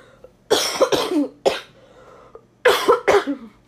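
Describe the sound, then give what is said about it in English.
A loud coughing fit from a person sick with the flu: a quick run of three harsh coughs, a short pause, then two more forceful hacking coughs, with no talking. “I mean, I definitely cough a lot during this. Excuse me. And I'm actually going to do it right now.”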